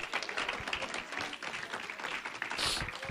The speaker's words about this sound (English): Let's clap right to the Lord.